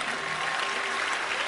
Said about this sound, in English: Bless God for those who understand and they are clapping.